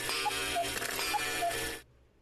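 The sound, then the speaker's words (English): A cuckoo clock sounds two high-then-low cuckoo calls over a steady, dense mechanical whirr, then everything cuts off abruptly into near silence. “Are you demonstrating that there's a haunted cuckoo clock near you?”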